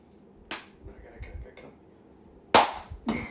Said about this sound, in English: We're tenderizing the meat, just FYI.